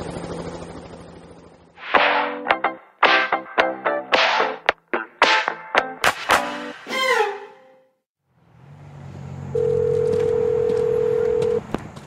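A quick run of bright electronic telephone tones beeps out over several seconds, then after a short silence a steady, continuous ringing tone hums over faint background noise. No one speaks.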